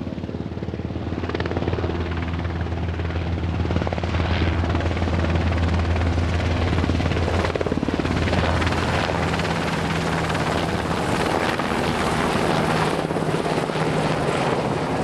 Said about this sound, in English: I've been listening to a military helicopter on a summer evening, and I hope this episode helped to remind you that that sound is not inevitable.